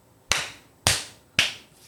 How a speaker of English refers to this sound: All right. Clap. Do it? Do the Nolia clap. Let's all clap and not in unison.